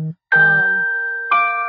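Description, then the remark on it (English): A phone notification chime rings out in two bright, sustained electronic tones, one at about 0.3 seconds and another about a second later, each ringing on and slowly fading. “I've got to turn my notifications off.”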